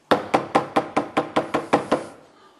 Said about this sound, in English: He goes over and knocks on another door.